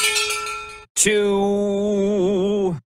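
A bright metallic bell, rung to announce breaking news, rings with a sustained, shimmering tone, cuts off briefly, then is struck again with a sharp clang that rings out steadily for nearly two seconds.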